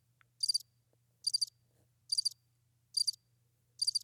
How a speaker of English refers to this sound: Bear with us here, listeners, because there's also crickets.